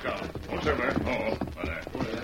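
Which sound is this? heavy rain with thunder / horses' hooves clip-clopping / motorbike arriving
horses' hooves clip-clopping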